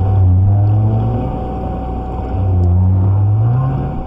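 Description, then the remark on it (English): Deep, drawn-out tonal moans from right whales, with one call sliding upward, heard through a steady hiss of underwater noise on an old, scratchy tape recorded in 1956 by William Chaville of the Woods Hole Oceanographic Institute. No voices are present. “Fifty years later, Parks made another recording of right whales at the Bay of Fundy”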